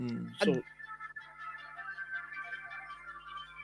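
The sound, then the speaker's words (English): A mobile phone ringtone plays a quick, repeating electronic melody of short bright tones at moderate volume, with a brief vocal sound near the start. “That is a cool ringtone.”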